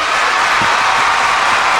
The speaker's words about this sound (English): I would say that this man deserves some applause. What do you think?